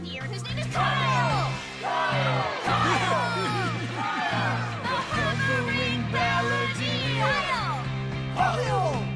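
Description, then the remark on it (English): A crowd cheers loudly and steadily for about nine seconds, many overlapping voices rising and falling in pitch with scattered whoops and shouts. “Everybody cheer!”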